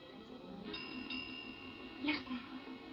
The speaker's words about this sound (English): Listen. The signal bell. Now will you believe me? Nonsense, that doesn't prove anything. But the bell, it always rings.